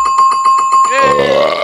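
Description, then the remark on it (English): A small bell rings with a sustained, bright tone and a rapid trembling pulse for about a second, then a voice breaks in over the fading ring. “Don't you ring your little bell or something?”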